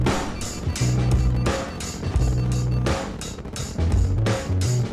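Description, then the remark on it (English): A loud, continuous rumbling roar like rocket engines at liftoff, steady and powerful throughout, with deep low-end surges pulsing underneath and no voices. “Ignition sequence start. 6, 5, 4, 3, 2, 1, 0. All engine running. Liftoff. We have a liftoff.”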